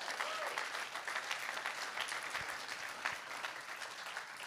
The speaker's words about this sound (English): Starting October 4th, we're going to two services, 9:15 and 11 a.m. You can choose a service. Come on, clap your hands if you're excited about it.